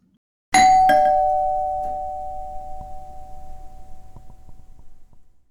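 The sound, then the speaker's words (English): A doorbell chimes loudly, two quick ringing tones struck close together, then a long bright hum that slowly fades away over several seconds. No voices. “So they're talking about what to do about this new sleepwalking thing that's happening when the doorbell rings.”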